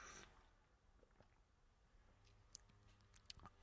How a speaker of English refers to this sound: I've got a cup of tea here, by the way. Let me just have a sip. Excuse me.